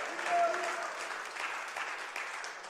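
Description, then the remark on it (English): A church audience claps during a sermon in a dense, steady wash of overlapping hand claps that holds at a fairly even loudness for the whole few seconds, with faint voices mixed underneath. “You can clap in this house.”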